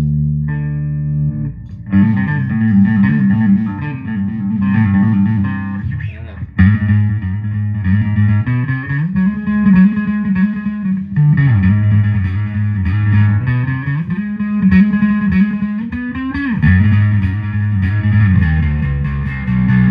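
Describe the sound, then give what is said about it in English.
Distorted electric guitar played through a wah pedal called the Dragon Wah, sustained chords with a sweeping, vowel-like filter that rises and falls in pitch over about twenty seconds, loud and with no voices. “Alright, this is a dragon wah.”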